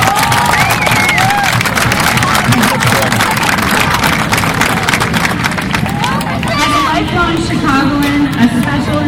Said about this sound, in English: Thank you for all the work that you put in over your life. Let's give a round of applause to all these incredible athletes.